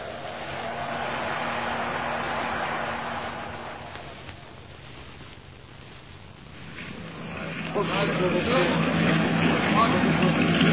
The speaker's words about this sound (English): Well, the wind is getting stronger, if anything. That's a mighty small launch for so much angry water, Sergeant.